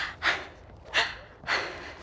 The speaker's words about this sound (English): Stop breathing. I have to breathe. It's too loud. I didn't mean actually stop breathing. It's really loud.